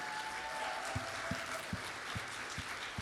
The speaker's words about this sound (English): If you actually are here and you've served at any point, if you're a veteran, could you stand where you are so we can give it up for you and honor you actively with our applause and say thank you?